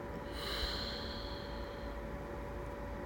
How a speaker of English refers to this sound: You can breathe however you want, but I started breathing in through my nose, holding it for 2 seconds. And then exhaling and holding that space for 2 seconds at the end of my breath.